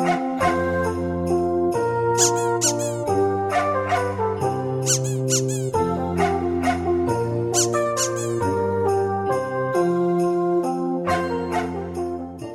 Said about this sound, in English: We wish you a squeaky Christmas with no fleas in your ears. We all love our dog toys.